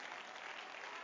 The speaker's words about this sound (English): Oh, somebody clap your hands and let's give some praise to the Lord.